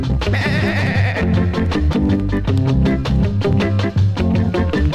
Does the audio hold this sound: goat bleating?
yes